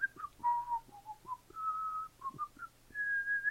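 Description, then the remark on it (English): A casual, meandering whistled tune with short rising and falling notes and a few longer held tones, clear, with no talking over it. “Innocent whistling.”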